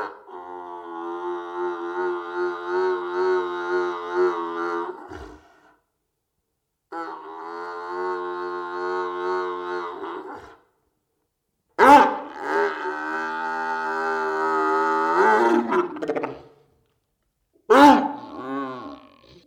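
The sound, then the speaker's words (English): Bull terrier dogs growling while playing tug of war with people, in long, loud, rumbling bouts with a strong tonal, almost roaring quality: four sustained growls separated by short pauses, the last one brief, with no talking. “We got them to make these crazy growls and just these otherworldly sounds that you never thought would come out of a dog.”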